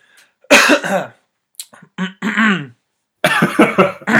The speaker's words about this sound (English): Get those coughs out.